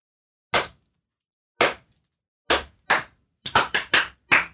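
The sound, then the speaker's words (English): A lone man in an audience claps, starting with slow, sparse sharp claps that speed up into a quicker burst, around nine in all, each crisp and fairly loud against silence, with no voices. “You hear one guy start clapping.”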